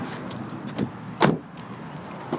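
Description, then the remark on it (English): A car door slams shut with a solid thud, framed by a couple of softer knocks, over a low, steady background hum, as people get back into the car to drive to a Home Depot parking lot. No one speaks. “We walk back to the car and drive back to the Home Depot parking lot next to NOPD property.”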